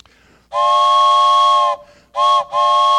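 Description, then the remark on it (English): A loud steam train whistle sounds: one long, shrill, multi-toned blast, a brief pause, then two shorter blasts in quick succession, with no voices. “All aboard! This train is bound for glory.”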